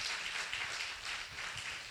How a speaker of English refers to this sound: Real people, can you help me out this morning? Give the Lord a clap offering like really good this morning.